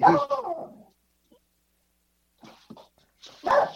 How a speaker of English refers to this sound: Sorry, folks. There's a dog going off.